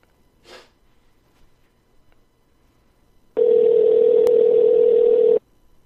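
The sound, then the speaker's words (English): A steady, loud telephone dial tone hums unbroken for about two seconds while a call is being placed, preceded by a brief soft sniff and near silence. No one speaks. “So let's get him on the phone, get him on the horn real quick, right?”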